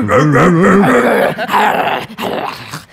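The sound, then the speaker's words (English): A loud, vicious dog growl, snarling and wavering in pitch for a few seconds, with brief breaks and a ragged, rabid edge. “That's the rabid one.”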